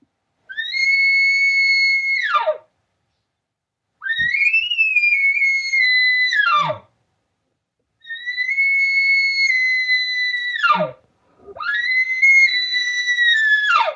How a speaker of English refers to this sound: But a cow is different. When a cow bugles, she requires attention, assistance. Where are you? Or come on over here. And here's the sound she'll use.